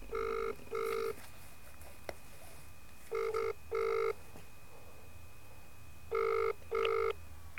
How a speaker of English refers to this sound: Keefe's answering service. Oh, it's ringing.